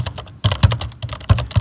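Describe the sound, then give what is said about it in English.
Steady typing on a computer keyboard at a work desk, a rapid run of sharp clicks with a few heavier key strikes standing out; no voices. “When I pulled in the parking garage, I took the first spot I could and was glad to get back at my desk, glad to be typing again.”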